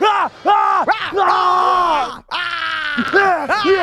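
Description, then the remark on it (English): A single loud voice imitates a quarterback's pregame yell on running out of the tunnel: a string of hoarse, rising-and-falling shouts and grunts in quick bursts, with one brief break midway. “That's what it sounds like in my head.”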